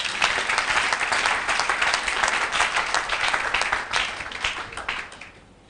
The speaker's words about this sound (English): Give the Lord a clap offering there.